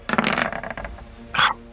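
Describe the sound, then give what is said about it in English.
Dice clatter and tumble across a hard tabletop in a quick rattling burst, settle, then give one more short clack, fairly loud with no voices; the roll, for a game shot at a creature, shows 9. “9 on the dice with their cover here against EAC.”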